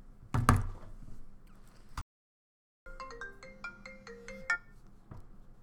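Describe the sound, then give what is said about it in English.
A phone ringtone plays a quick melodic run of bright, chiming notes during an outgoing call, preceded by a soft thump and a moment of silence; no one speaks. “This is just a shotgun interview right now, okay. Yeah, we just been calling everyone,”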